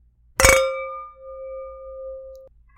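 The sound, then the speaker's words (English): Wine glasses meet in a single bright clink, and a clear, steady ringing tone lingers for about two seconds before cutting off abruptly. “Well, you ready to cheers and try these wines?”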